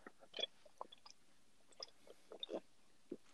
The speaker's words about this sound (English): Can you hear him drinking it? Drinking the milk. You can hear him slurping it down. He's like, gulp, gulp.